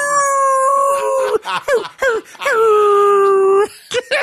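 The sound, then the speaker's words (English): A person's voice mimics a wolf howl: a drawn-out, loud wavering tone that slides down in pitch, broken by short yelps, then a second long sustained howl that fades off. “That howling wolf.”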